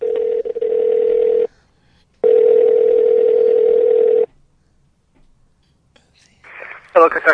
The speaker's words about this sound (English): So why don't we dial Joel up on the phone and see what he has to say